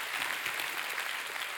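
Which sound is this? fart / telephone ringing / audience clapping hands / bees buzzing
audience clapping hands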